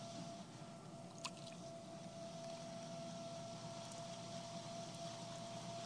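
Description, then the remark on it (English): A potter's wheel hums steadily while a potter keeps applying water to the spinning clay, making soft, continuous wet squishing and sloshing with one brief click early on. No one speaks. “The potter keeps applying the water.”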